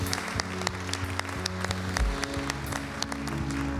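During a sermon, a crowd breaks into sustained applause as a hand clap of praise to God: many hands clapping in a dense, steady wash with sharp individual claps popping through, over a low sustained organ-like hum.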